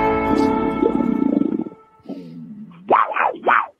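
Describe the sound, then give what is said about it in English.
A loud, rumbling big-cat roar opens, fades into a low growl, then two sharp rising snarls burst out forcefully near the end. “In a world where Carolina Panthers fans have an insatiable thirst for Panthers news and opinions, only one podcast roars ferociously.”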